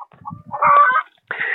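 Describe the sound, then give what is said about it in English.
A couple of chickens on their roost in a coop, about a foot and a half away, cluck: a few soft, low clucks, then a louder drawn-out squawking call, followed by a brief harsh burst of cackling. “There's a couple of chickens up on their roost looking at me.”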